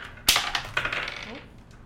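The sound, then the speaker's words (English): A d20 die clatters onto a hard tabletop with a sharp first strike, then tumbles through several quicker, lighter bounces that fade as it settles, alone without any voices. “Roll for initiative, please. Is that, that's 20, right? Yeah. D20, yep.”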